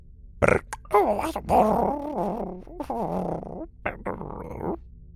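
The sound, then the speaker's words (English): A small creature whimpers in a few wavering, whiny bursts with short pauses between them, fairly loud, with some throaty grunting mixed in and no talking. “sat alone and whimpered over a chocolate bar as he watched his best friend slip away”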